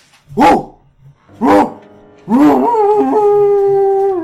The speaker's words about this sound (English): From further in the precinct, you can hear barking.